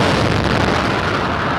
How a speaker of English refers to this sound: The first of the two explosions rocks the sidewalk along the course. White smoke blasting into the air, blowing metal barricades into the street, spewing shrapnel into crowds gathered at the finish.